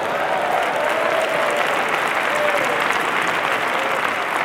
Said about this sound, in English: Let's just go ahead and clap our hands and give God praise for that.